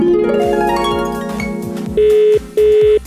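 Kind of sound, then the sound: signal or alarm, phone call ringing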